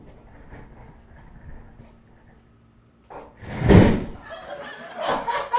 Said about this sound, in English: So without further ado, last week's video, our youth pastor falling out of his chair in the office. Let's check it out.